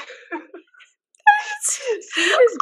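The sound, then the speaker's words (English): A dog named Hootie retches and hacks as if trying to cough something up: harsh, throaty heaves in three loud bursts after a brief quieter stretch of soft gurgling. “Hootie trying to barf out a loogie.”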